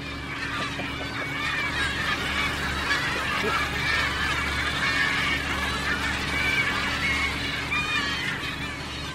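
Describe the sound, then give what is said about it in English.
A dense flock of about 500 gulls and gannets, waiting to be fed as leftovers from the catch go back to the sea, calls nonstop, many overlapping squawks and cries at once, over a steady low engine drone. “Deck now after seagulls.”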